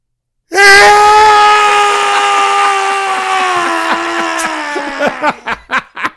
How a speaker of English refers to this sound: Jesus Christ. Sounded like a baby screaming. 1990. Yeah, that's what he sounded like in the movie.